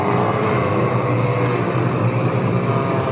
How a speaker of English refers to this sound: Sounds like that's a swarm of locusts. That sounds like a swarm of locusts. That's horrible. Horrifying.